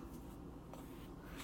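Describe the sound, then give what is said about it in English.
A scoop of instant French vanilla coffee pours into a cup with a soft, steady granular hiss and faint scratchy rustling that lasts about a second and a half. No one speaks. “And pour it in the cuppy.”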